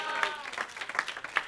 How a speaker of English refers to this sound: Keep clapping. Keep clapping with the intent.